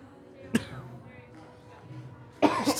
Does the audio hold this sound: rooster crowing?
no